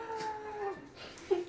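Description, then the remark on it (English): A faint, distant scream: a long, wavering, howl-like cry that holds a steady pitch, then swells into a sharper, louder burst just before the end. “In the distance, you hear a scream.”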